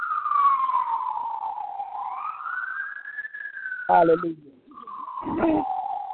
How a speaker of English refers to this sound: Seems like the ambulances are running in Little Rock, Arkansas as well.